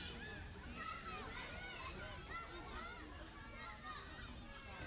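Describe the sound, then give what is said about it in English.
Many children shriek and squeal happily at play in a park, their high, overlapping cries rising and falling continuously over a dense, steady bed of noise, with a hint of splashing water. “They're so happy they scream.”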